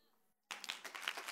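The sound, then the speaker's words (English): After a brief hush, an audience breaks into clapping: a dense, crackling patter of many hands that starts abruptly and stays fairly loud and steady to the end. “No, don't clap yet.”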